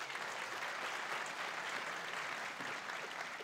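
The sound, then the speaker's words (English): Steady applause from an audience at a Long Now Foundation talk, members of the foundation clapping to show their membership, a dense wash of many hands clapping at an even level throughout, with no voices standing out. “By a quick show of applause, how many of you out there tonight are stainless steel card-carrying members of the Long Now Foundation?”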